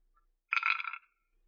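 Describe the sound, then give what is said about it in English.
A D100 die being rolled, landing on 13: a quick, bright rattle of small clicks lasting about half a second, fairly quiet, with no voices around it. “Okay, we're getting Dice Foley out of this.”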